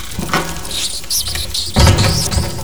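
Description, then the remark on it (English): Shrill, high-pitched rat squeaks chirp repeatedly over a soft pattering of scurrying feet, fairly loud, with a heavier rustling thump near the end. No one speaks. “The rat stopped.”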